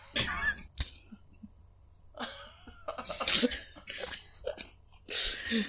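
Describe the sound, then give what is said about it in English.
A series of harsh, wet coughs and throat-clearing sputters, fairly loud, in irregular bursts with short gasping pauses between them, as a man coughs up water and then a little blood. “And God forbid if you win a hand over him in his casino as he begins coughing up water and then a little bit of blood.”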